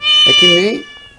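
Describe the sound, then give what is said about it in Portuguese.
A single drawn-out cat meow, loud, rising then falling in pitch over about half a second before fading away. “Isso é rabo de gato. Tem um gato na outra ponta, né?”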